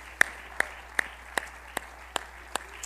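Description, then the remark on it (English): An audience claps hands together in a steady, even rhythm during a Bible lesson, about eight sharp claps in unison, with faint room noise between them and no talking. “If you believe that, why don't we just clap our hands today?”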